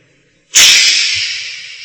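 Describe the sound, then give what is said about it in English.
A snake lets out a sharp, sustained hiss that starts suddenly and slowly fades over about a second and a half, bright and breathy with no other sounds around it. “Snake came out.”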